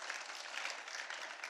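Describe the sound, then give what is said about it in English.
A crowd applauds steadily for volunteers, a dense wash of many hands clapping at an even level throughout, with no voices standing out above it. “Can we clap for them just real quick?”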